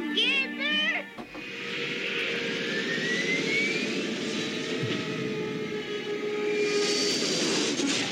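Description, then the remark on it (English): After a brief wavering, voice-like warble, a loud, steady jet engine roar takes over and holds for several seconds, a dense rushing blast with a thin whine gliding upward through it. “They had jet propulsion back then?”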